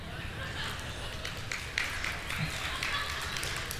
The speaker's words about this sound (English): Good to know that Chuck Norris still gets claps. That's good. Somebody should let him know.